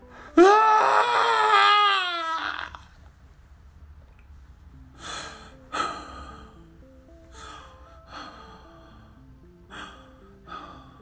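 An angry, strained scream, muffled into a man's shoulder during a hug, bursts out for about two seconds, rising in pitch, then gives way to a series of short, ragged breaths and soft sobbing gasps.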